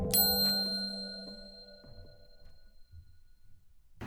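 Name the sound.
bell ding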